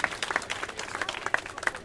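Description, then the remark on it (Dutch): Audience applause for a speaker, by a canal opposite the Anne Frank House, a steady patter of many hands clapping at moderate volume with no talking over it. “Ik wil nog graag een applaus”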